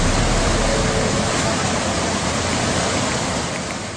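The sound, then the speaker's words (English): A loud, steady roar of floodwater pouring like a waterfall into Wong Tai Sin MTR station in Hong Kong during a rainstorm, a dense continuous rush that fills the whole clip without pause, with no voices. “And I guess the most popular or the most viral video that everyone's looking at was that video that shows Wong Tai Sin MTR station turning into sort of a waterfall.”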